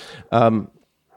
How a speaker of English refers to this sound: Is a dog's bark a form of a death threat? Just a threat, to the gopher or the little moth or whatever. I'm going to get you.